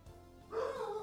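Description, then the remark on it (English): A little puppy lets out a single drawn-out, high-pitched bark that slides slightly downward, fairly faint, following a brief quiet moment with no one talking. “Oh, got a little puppy saying hello.”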